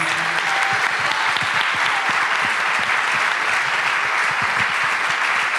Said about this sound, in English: So before we close, I'd like to thank our co-presenter tonight, the Natural History Museum of Los Angeles County. A big round of applause for them